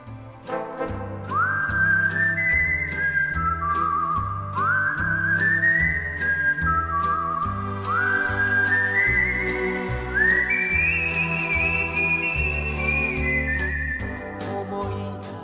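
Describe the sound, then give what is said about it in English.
A bright, clear whistled melody rises and falls in repeating phrases over a steady musical backing with a regular bass pulse, loud and upfront throughout, with no talking. “He crushes it with the whistling here. So let's have a listen to that right now.”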